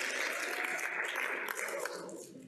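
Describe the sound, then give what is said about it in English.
An audience breaks into steady, dense applause, many hands clapping together in a continuous wash of sound that holds for a couple of seconds before starting to taper off. “We can clap. Let's do it good, huh?”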